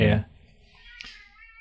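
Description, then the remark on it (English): A friendly cat, just let in, lets out a single short, loud meow right at the start, followed by quiet and one faint tap a moment later. “And there's the cat.”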